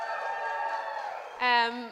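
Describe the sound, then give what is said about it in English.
A church audience at an evening service cheers for the people streaming the service, with many voices holding a steady, sustained whoop that swells into a louder, higher-pitched shout near the end. “Should we cheer for the streamers?”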